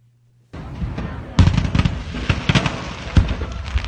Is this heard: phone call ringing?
no